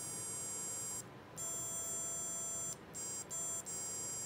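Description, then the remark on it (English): Steady electronic sine tones play from a small speaker on a Stemma amplifier and speaker breakout connected to a Circuit Playground Bluefruit, triggered by pressing two buttons: a high pure pitch sustained with brief gaps where it cuts out and resumes, over a faint hiss with no talking. “And when I press the two buttons, I'm going to play different tones.”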